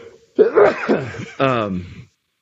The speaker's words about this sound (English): Another sneeze.